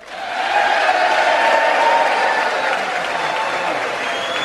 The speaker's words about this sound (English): One presumes that's the Republican side applauding. But maybe I'm wrong. Yeah, no. They all stood.